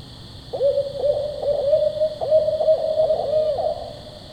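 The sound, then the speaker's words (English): A recording of a barred owl's hooting call, played to try to draw a response from an owl, rings out clearly for about three seconds, a series of rhythmic, slightly wavering hoots over a steady background hiss, with no talking. “You're listening to the barred owl.”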